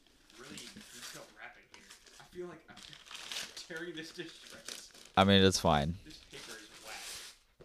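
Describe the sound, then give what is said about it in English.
Wrapping paper crinkles and rustles in irregular bursts as a gift, a Razer Huntsman keyboard, is unwrapped, running under casual conversation, with one voice briefly rising loudly partway through. “This paper is whack. Yeah, I tried my best wrapping this.”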